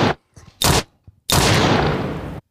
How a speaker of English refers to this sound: One more gunshot. One more. The gunshots are so appropriate right now. So, another one.